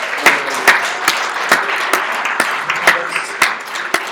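A crowd applauds steadily, with many overlapping claps forming a dense, even patter and a few sharper individual claps popping out above the wash. No one speaks over it.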